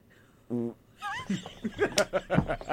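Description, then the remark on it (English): A short, buzzy fake fart squeezed out by a hand cupped under a shirt, one brief burst, quickly followed by loud laughter and high squeals. “I always do this one where I cup my hand into my shirt, and it actually sounds like a real fart.”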